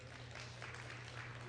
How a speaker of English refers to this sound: Boy, that's just overwhelmingly powerful applause. We're off to a great start.